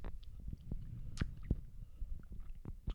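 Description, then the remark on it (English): Quiet slurping and wet mouth clicks as someone sips a cheap lager beer, a few soft gulps and smacks scattered over a low murmur, with no talking. “Have a sip.”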